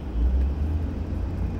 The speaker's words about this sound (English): And then they hit this. Traffic. Construction.